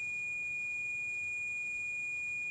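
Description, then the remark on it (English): A REM pod alarm sounds as a steady, high-pitched electronic tone that holds unbroken for a couple of seconds over a faint low hum, with no one talking. “And the REM pod alarmed. And we said, okay, step back, and it would go off.”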